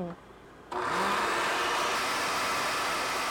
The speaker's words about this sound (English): Nice and frothy. Okay, I'm going to really chop out a lot of this so people don't have to listen to the blender going